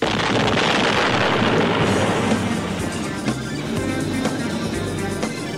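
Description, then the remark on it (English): A loud explosion of a magnetic power pack attached to a door, set off by a thrown throwing star, blows a hole in the door, with dense, rumbling noise that fills the whole stretch and a few sharp cracks and clatters breaking through near the end. No one speaks. “A giant explosion blew open a hole in the door”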